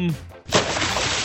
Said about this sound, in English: It's twice the splash effect has been used today. Like, was that a cannonball? Was that a jackknife?